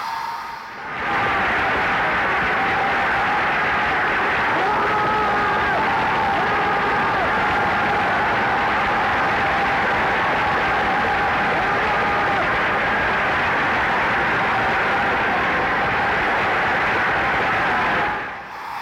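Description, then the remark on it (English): An opera audience bursts into dense, sustained applause that is not a break for applause, coming before the singer has sung; it swells in quickly, holds at a steady roar for about seventeen seconds, then cuts away, with no singing or music audible. “That is not a break for applause, obviously. That's just where people can't fucking control themselves.”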